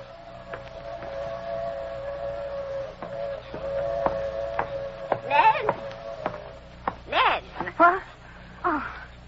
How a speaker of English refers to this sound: In a valley below, a passenger train moves swiftly through the dusk. The girl watches the train, her eyes follow it intently.